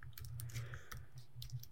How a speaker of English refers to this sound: So you're typing frantically looking this up.